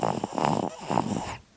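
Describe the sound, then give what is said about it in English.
A baby napping under a desk gives a small, rough snore that rattles through two quick breaths, a raspy, snorting sound that trails off into quiet at the end. Nobody speaks. “I didn't know babies could snore like that.”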